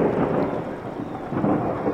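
A steady thunderstorm roars with low rumbling thunder beneath a dense wash of falling rain, loud and continuous throughout, with no voices present.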